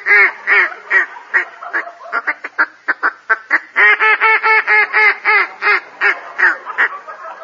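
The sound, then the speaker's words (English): A duck call blown in a rapid string of nasal quacks, with short bursts speeding into a fast chattering run, then slower drawn-out quacks. Loud and unaccompanied by talk. “Wrap out a duck call.”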